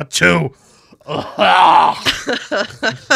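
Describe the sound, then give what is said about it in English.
A person theatrically imitates a sneeze with a strained, groaning vocal build-up, a loud drawn-out burst, then a string of short choppy vocal sounds. “You've heard me sneeze. I don't do it cute. No, you do it like she does. So it's like this.”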